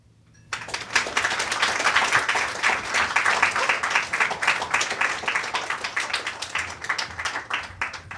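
Audience applause bursts in after a short quiet start, a dense, steady patter of many hands clapping that stays loud for several seconds and only slightly thins toward the end.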